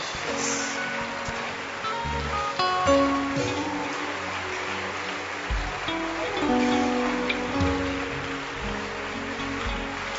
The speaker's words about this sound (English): Follow them. Regional heads, please go. Keep clapping for them.